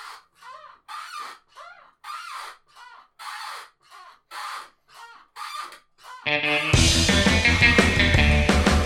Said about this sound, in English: There might be a lot of chair squeak in this for me, and I'm sorry about that. I'm testing it now.